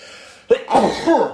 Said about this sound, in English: How many bears are in there? Because hold on, I gotta sneeze.